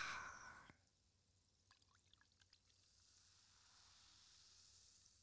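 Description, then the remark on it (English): A short, loud rush of sparkling rosé being poured from a freshly popped bottle, then a quiet crackle of scattered bubbles popping and a soft, steady fizz that slowly grows. Nobody speaks. “We gonna pop our bottles too. Mm-hmm. Listen to that shit.”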